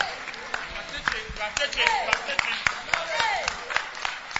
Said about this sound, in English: Those who are clapping are getting it.